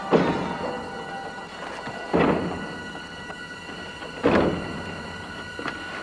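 A porch swing creaks back and forth in a slow, steady rhythm, each groaning, whiny creak arriving about every two seconds with faint knocks in between. No voices.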